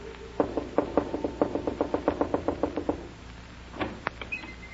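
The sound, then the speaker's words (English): A rapid series of about twenty firm knocks on a wooden door, steady in rhythm, followed by a brief pause and a few softer, scattered taps and rustles. “Whatever do you mean by knocking on my door when the sign plainly says, Absolutely no knocking until after 9 o'clock daylight saving moon time.”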